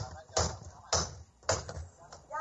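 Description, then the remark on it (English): St. Lucie County Fire District rescue crews force open a locked door at a home with three heavy, booming blows about half a second apart, followed by a lighter knock, with faint background voices underneath. “Lucie fire rescue crews arrive at a home and rush to break open a locked door.”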